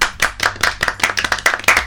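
A short round of applause for a subscriber: quick, irregular, sharp claps follow one another at an even loudness for about two seconds, with no voices over them.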